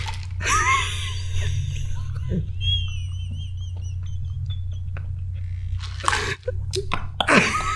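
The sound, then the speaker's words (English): Handling of a plastic water bottle, with plastic crinkles and a brief squeak as it's opened, then a pause before more rustling and sipping sounds over a steady low hum. “Just let me drink my water, man.”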